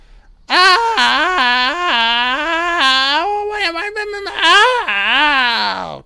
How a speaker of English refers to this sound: Everyone scream. There's nothing more you can do, guys. Just got to scream out loud.